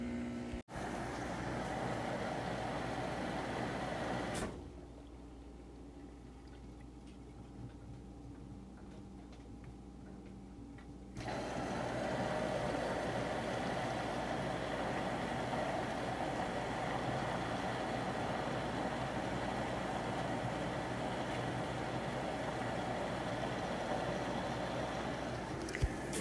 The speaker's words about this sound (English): That's more of my washing machine making different noises.